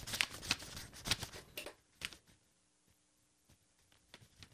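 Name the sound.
paper being ruffled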